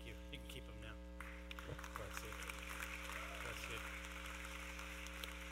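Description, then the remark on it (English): A crowd at a church service claps together, a dense, steady patter of many hands that starts abruptly and continues at an even loudness, with a low constant hum running underneath throughout. “I think we can clap better than that.”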